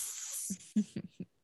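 A short aerosol spray hisses steadily for about half a second, fairly loud, then cuts off as people start talking in brief bursts.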